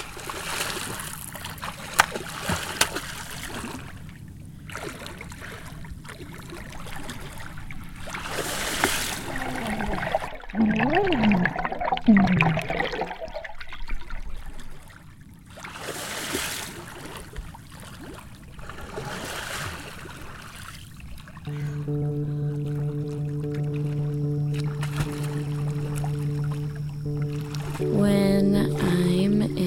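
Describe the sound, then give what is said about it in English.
Lake water sloshes and splashes in uneven bursts as someone swims with repeated strokes. Toward the end, a steady humming tone rises beneath the watery movement. “I don't think I ever regret putting my head underwater in a lake.”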